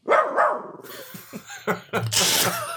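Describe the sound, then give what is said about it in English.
A voice imitates a dog, giving two quick barking yelps, followed by bursts of laughter and breathy noise from several people. “A dog barks and everyone laughs.”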